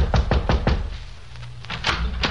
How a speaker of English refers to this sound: The mailboxes gave us the number of the apartment we were looking for. It was on the second floor. We went up a flight of carpeted stairs and knocked on the door of 2A.